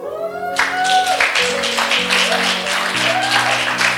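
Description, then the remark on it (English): An audience breaks into steady applause for the audiovisual team that starts abruptly and keeps going, a dense wash of clapping over a sustained musical tone in the background. “And then I think we need to especially applaud the audiovisual team.”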